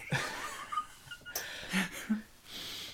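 Several short, breathy sniffs as someone sniffs a tea bag, coming in quick uneven bursts with brief pauses between them, fairly quiet and with no talking.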